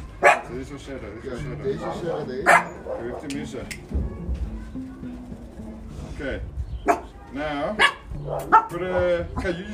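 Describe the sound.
A dog barks in repeated sharp bursts, loud, with voices talking in the background between the barks.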